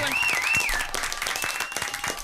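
Steady applause from a studio audience, many hands clapping in a dense, continuous patter with a few whistles rising over it, holding at an even loudness throughout.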